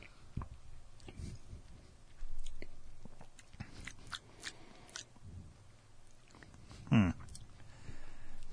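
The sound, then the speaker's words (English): Someone takes a sip of premium Fitz's coffee cola soda: quiet mouth clicks and faint handling noises, then a brief, louder slurp near the end, with no talking. “It just smells like pop to me. It does not have like a fucking... All right, I'm taking a sip.”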